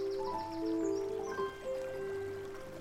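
The River Wharf flows gently past stepping stones near a church, its water moving steadily at a soft, low level, with a faint trickling texture and sustained tonal notes drifting above it throughout.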